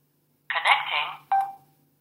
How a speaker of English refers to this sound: Okay, and you heard it say connecting and a beep. And that's what it does when it comes back in range or when you turn the unit on from being off.